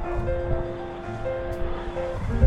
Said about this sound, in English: Right on cue, plane taking off. I was going to say if podcast ever stopped for... Damn thing. I can't even hear myself talking, is how loud that is.